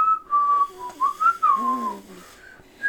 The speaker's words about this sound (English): It's definitely not... It's not like the bottom or top. It's in the middle of your mouth when you whistle.